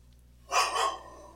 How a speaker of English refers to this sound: Now my dog's turned to bark. Except my dogs are much louder than your dogs.